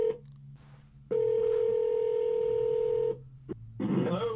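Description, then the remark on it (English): A phone line rings once as a call is placed to a guest for a live show: a single steady electronic ringback tone about two seconds long, clear and fairly loud, followed by a click and a burst of line noise. “Now it's ringing.”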